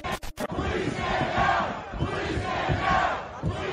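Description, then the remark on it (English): A large crowd of protesters outside the Capitol roars and shouts continuously as they force their way up the Capitol steps, a dense wall of angry voices with swelling chants rising and falling, heard from within the mob after a brief choppy start. “first appears in crowds outside the Capitol. She's shouting and taking photos. She and the other protesters force their way up the Capitol steps.”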